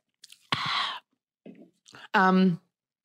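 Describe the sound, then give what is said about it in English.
A quick noisy slurp, a few soft wet mouth and swallowing sounds, then a short voiced satisfied 'ahh' after sipping a Coca-Cola, with no talking. “So let me just sip my Coca-Cola before this one.”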